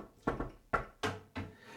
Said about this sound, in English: There will be no more injuries. Stop. Some wood to knock on.